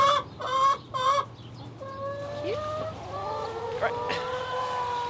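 Chickens cluck in a few short bursts at the start, followed by drawn-out squawky calls and softer clucks continuing over a low background hum.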